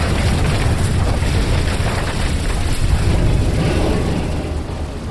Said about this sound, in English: We crashed our starboard side hard against the rocks.